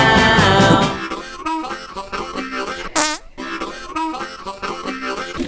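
A loud run of buzzy, sputtering fart sound effects, one after another in uneven bursts, broken midway by a quick rising whistle. No one speaks.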